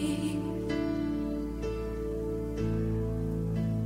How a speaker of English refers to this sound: I've had enough of this sissy, pansy, cannon fodder written music you have the audacity to call worship. Men, put this entire girly praise band in the boo box.